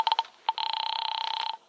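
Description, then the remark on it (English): A telephone rings unanswered with a warbling electronic trill: a few quick short bursts, then one longer ring of about a second. It sounds clear, with no voices. “Line busy? No answer.”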